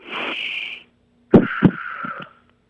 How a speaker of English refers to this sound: Could you do a deep breath in and a deep breath out for me real quick? Like over the phone? Right. Yeah. Just a deep breath in and a deep breath out, and I'm going to monitor your breathing.